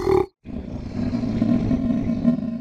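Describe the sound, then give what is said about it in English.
A short snarl cuts off, then a deep, rumbling growl from a monster with a large monkey face, tiger claws and a lizard's tail rolls on steadily for a couple of seconds, loud and gravelly with a low, throaty pitch and no talking. “And it growls and snarls hungrily at you.”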